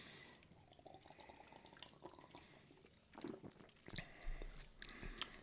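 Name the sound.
sipping a drink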